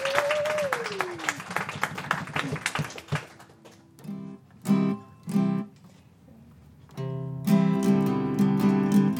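A crowd applauds with dense, steady clapping for about three seconds, then the clapping fades as sustained musical tones begin and swell in short bursts.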